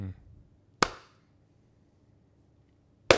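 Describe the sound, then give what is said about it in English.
Two loud, sharp hand claps spaced a little over two seconds apart, each a crisp single smack with a quick decay, over a faint low background hum and no talking. “Episode 7, start off with the two claps, bit of, I'm going to say our trend.”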